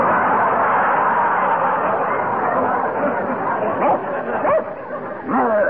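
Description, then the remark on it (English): A man mimics a big brown Airedale dog, letting out a few short yipping barks and whines toward the end, set against a steady hiss of background noise and crowd chatter. “you are an Airedale. A big brown Airedale. Speak.”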